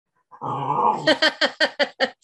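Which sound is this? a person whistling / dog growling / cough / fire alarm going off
dog growling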